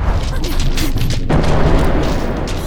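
A loud explosion as a cannon is destroyed, with a sharp burst about halfway through, followed by a heavy rumbling boom and crackling debris that continue to the end.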